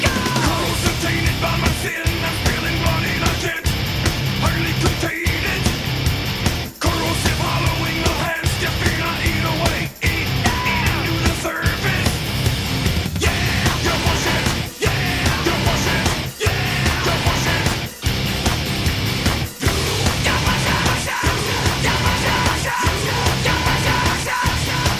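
A loud, dense industrial metal track with distorted guitars and pounding drums, punctuated by regular sharp breaks in the wall of sound, with shouted vocals on top.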